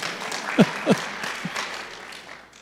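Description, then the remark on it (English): A crowd applauds steadily, the dense patter of many hands forming a continuous wash, with a couple of sharper low thumps standing out early on. “You can clap.”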